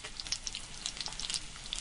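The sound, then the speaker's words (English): Food sizzles steadily in hot oil, a dense crackling hiss peppered with sharp little pops and spits throughout, with no one speaking. “start cooking some more. Yeah, take them off and put them on like a paper towel to drain a little bit.”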